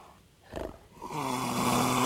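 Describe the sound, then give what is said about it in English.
A leopard's harsh, rasping roar, played from YouTube, like a deep, loud snore: one short grunt, then a sustained sawing rasp with strong low harmonics that builds in loudness. No one speaks. “Let's see if we can have a listen to what a leopard actually sounds like.”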